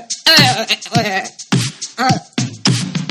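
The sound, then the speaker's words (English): A human voice imitates a goat's bleat in a series of wavering, quavering cries, loud, with several short bursts over about three seconds. “It's hard to breathe with a cock in your throat, so I accidentally make a noise that sounds like a goat.”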